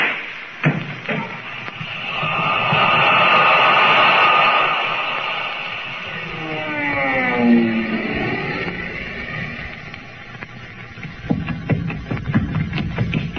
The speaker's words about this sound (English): Sounded like a shot. Thought I heard a man scream.